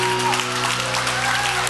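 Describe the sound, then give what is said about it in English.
An audience at Hope Chapel claps together in a dense, steady wash of applause, loud and continuous for the whole moment, with a low sustained hum underneath. “Come on, if you believe that, give God a big clap.”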